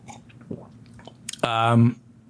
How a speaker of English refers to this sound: Sorry, people complain when they can hear me sipping water. I apologize.